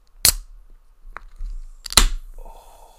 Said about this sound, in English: are you ready for this AMSR, like AMA, whatever the word is? ASMR, mate. Yeah. You ready for the opening the can? Get ready for this.